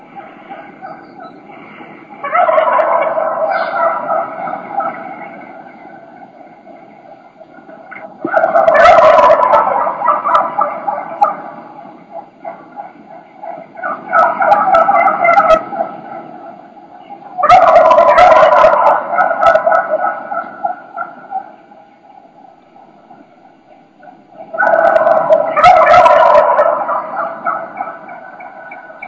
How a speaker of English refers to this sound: and you can just hear, this is early season. This is kind of when they're still in those big flocks that we talked about in some of the setup episodes. You'll just hear a bunch of chaos. There's a bunch of hens and a bunch of gobblers in the tree.